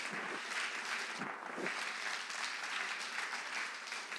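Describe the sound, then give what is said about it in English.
An audience claps their hands steadily to give thanks to God in the morning, a dense wash of many overlapping claps filling the room at an even level, with no talking over it. “Come on and clap your hands and give him thanks this morning.”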